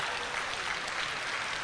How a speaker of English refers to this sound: Come on, clap your hands, somebody.